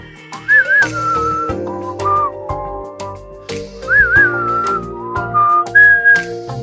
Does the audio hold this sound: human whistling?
yes